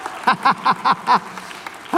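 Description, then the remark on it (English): A handful of claps from about four people at a Portland Christian gathering, landing in a quick, fairly even rhythm, then trailing off into a pause before one more clap near the end. Sparse, with no one talking. “Portland Christians, oh, like four of us are clapping.”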